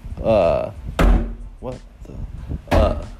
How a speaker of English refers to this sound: I think there's children banging on my door right now, like students,